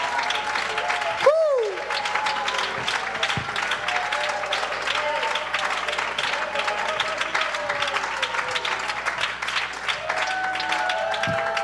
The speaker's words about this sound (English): Put your Bible down, begin to praise him all over this house. One more time with me, will you? Come on, clap unto the Lord, all you people. Make a joyful noise unto the Lord.